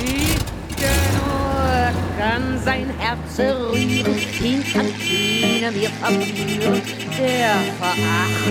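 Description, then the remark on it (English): A staff car's engine roars loudly, its pitch repeatedly climbing and dropping as the car accelerates through the gears and drives on steadily; it is Rommel's staff car, driven by his driver on the journey back to the Chateau La Roche-Guyon. “Instead, he called for his staff car.”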